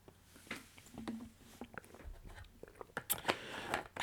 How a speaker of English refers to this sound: Hold on, I gotta drink some water. I am thirsty.